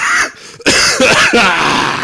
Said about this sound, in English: Into your mic, I cough. Motherfucker. I can be like sitting here talking to you for like, you know, like a half hour before we do this thing. And I'm like, no coughs. But as soon as we hit record, I'm like, all right.